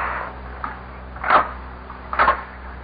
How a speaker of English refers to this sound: A knock on the door.